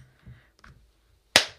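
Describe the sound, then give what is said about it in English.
A single sharp hand clap, made as a time marker in a recording, rings out loud and bright, decaying quickly, after a brief moment of faint low shuffling and soft noises. “Okay, I'll do a clap.”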